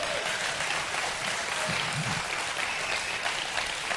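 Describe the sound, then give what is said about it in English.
A church audience claps for God during a sermon, steadily for several seconds, a dense, crackling wash of many hands with no distinct rhythm, holding at an even level throughout with a few faint voices mixed in. “Y'all give God a clap and wake somebody up.”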